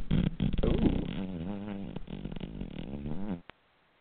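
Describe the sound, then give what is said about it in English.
A loud, drawn-out fart sound effect with a wobbling, buzzy pitch that lasts about three and a half seconds, then cuts off abruptly, followed by a brief click. “Talking like fart, and we're talking, you know, stuff like that.”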